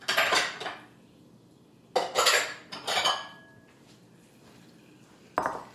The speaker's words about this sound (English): And now we need to pour this into a bowl just to cool it down quicker. You can just leave it in the pot, but then it takes longer. And I don't want to dip my fingers into boiling hot simple syrup. So into a bowl it goes.